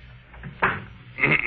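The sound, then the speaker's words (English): A door swings shut with a firm clack, followed about half a second later by a second rattling thud as it settles into the frame, with no talking. “Just stay outside. Close the door behind you.”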